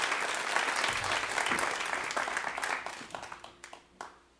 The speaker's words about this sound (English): It's awesome. Give them a round of applause, you guys. Very, very cool. Great job.